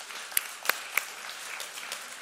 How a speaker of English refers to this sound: And it's really fun to report today that from both locations, we have a total of 529 gospel conversations. Isn't that cool? You can clap for that. That's pretty awesome.